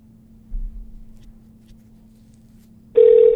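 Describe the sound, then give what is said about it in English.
A low, steady hum runs quietly for a few seconds before a loud, bright electronic telephone ring suddenly starts near the end. No one speaks. “Whenever that phone rings, I like it.”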